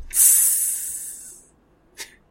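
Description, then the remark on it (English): A voice imitates salmon sizzling as it is seared while cooking: a loud, breathy hiss that starts abruptly and fades out over about a second, then a brief, short hiss after a pause. No talking. “Like it's being seared. Sound like when you cook them.”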